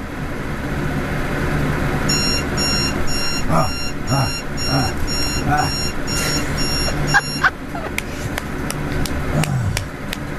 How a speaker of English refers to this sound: I got my spaz when the alarm goes off, so. Did you say shit? I said shit. And then you can hear me, like, clicking at the, clicking the alarm. Clicking at, like, giving yourself a few more minutes? No, I'm just trying to turn it off.